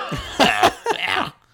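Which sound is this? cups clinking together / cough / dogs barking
cough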